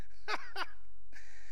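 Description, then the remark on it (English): Heavy breathing into a microphone whose fuzzy windscreen has been knocked off: two quick, harsh breaths in close succession, a short pause, then a longer airy exhale. No one speaks. “I think I've done knocked my little fuzzy thing off again. Because I hear myself breathing.”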